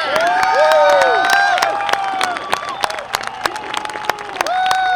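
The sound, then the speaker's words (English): A crowd at JPL cheers loudly and continuously at the Mars rover touchdown, with whoops, high shouts and sustained voices layered over a steady wash of clapping; sharp claps punctuate the noise throughout. “Well, the crowd went wild, of course, and well, they should have.”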